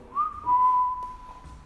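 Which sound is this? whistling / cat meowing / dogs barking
whistling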